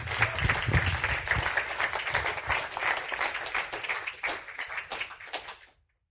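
A crowd applauds steadily for about six seconds, a dense rattle of many hands clapping at once, gradually thinning before it stops abruptly.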